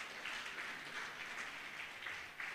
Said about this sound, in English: Church, say amen with me. And then clap your hand for Jesus.